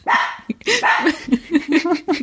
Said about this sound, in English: That's Magnus. Hang on. This is Magnus the dog, everybody. I think Magnus is trying to tell his story of experience of Jeremy Bates.